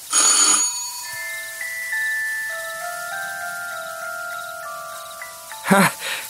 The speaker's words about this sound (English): This must be the doorbell.